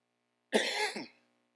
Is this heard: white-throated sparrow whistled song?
no